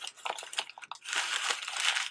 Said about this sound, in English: Kind of like this crumpled up newspaper. We look like this to God, all of these little black dots, these sins.